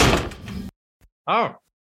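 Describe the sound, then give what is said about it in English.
A door rattles and slides open with a broad, clattering rush, followed by a faint click and then a short, high creaking squeak as the door on the other side swings open, both doors on each side opening. “And as soon as we're laughing, you see both of the doors on each side go.”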